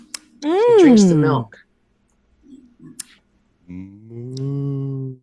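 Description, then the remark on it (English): Cattle moo twice outside, heard from a distance from inside a house: a wavering, rising-and-falling call followed after a short pause by a longer, steady low moo, with a few faint clicks and knocks in between. “We hear the distant moos outside.”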